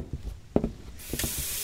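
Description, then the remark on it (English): A few soft, low clunks and knocks, then water suddenly gushes from a tap about halfway through as someone checks the water supply is still working, settling into a steady, fairly loud hiss until the end. No one speaks. “we still have water for now, right? Check it.”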